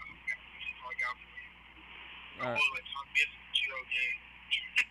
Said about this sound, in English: They can't hear. They can barely hear. I can barely hear you. All right, man. Yeah, you need a new phone, man, because that mic was horrible.